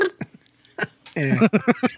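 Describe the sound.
A voice imitates fart noises with a couple of short, sputtering bursts, then a louder run of rhythmic, buzzy voiced pulses.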